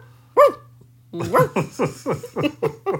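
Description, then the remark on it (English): A person imitates a German Shepherd dog barking: one sharp bark, a short pause, then a fast, rhythmic run of about eight loud barks. “You need to be like a German Shepherd dog.”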